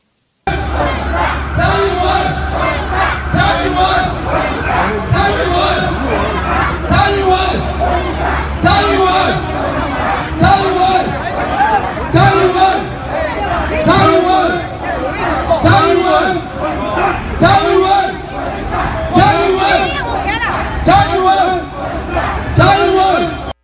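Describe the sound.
A crowd of pro-China protesters in New York City in 2019, during Tsai Ing-wen's transit through the U.S., yells and chants "Tsai Ing-wen, get out," voices loud and dense throughout, with rhythmic shouted bursts rising above a steady roar of overlapping shouting.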